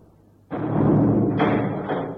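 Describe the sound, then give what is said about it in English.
A heavy self-locking secret door, the dragon's mouth of an inner temple, rumbles and grinds shut, a loud, sustained scraping thud lasting under two seconds after a brief quiet moment, with no voices. “Hey, the dragon's mouth, it's closed us in. It's only shut.”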